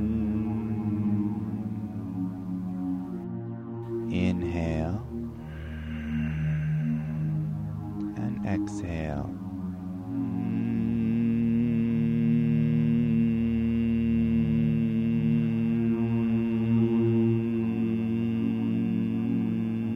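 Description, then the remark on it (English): A steady, low nasal hum held for several seconds at a time, imitating a buzzing bee during the Bhramari Pranayama breathing exercise. It is exhaled through the nose with the buzz made in the throat, with brief breaths between the long droning exhales and the hum growing fuller toward the end. “And exhale through the nose, making a buzzing bee sound in the throat.”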